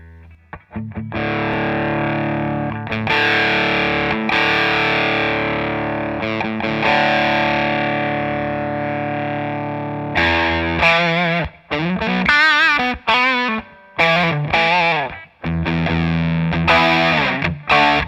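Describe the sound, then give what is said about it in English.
Electric guitar, not a particularly bright one, played through an overdrive pedal while its dry control blends some of the dry signal back in: a long, gritty chord sustains for about ten seconds, then gives way to choppy, stop-start riffs and bent notes, loud and without any talking. “So that's me messing with the dry, that's the dry control. I'm blending in some of the dry back.”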